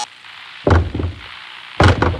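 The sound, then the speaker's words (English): Heavy wooden thuds against a stuck door, a couple of dull bangs about a second apart, fairly loud, with faint rattling after each impact. “The door is stuck.”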